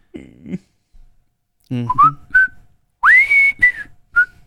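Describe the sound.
Someone whistles a short, cheerful TV theme tune, a few bright sustained notes with little slides between them, preceded by brief murmuring voices.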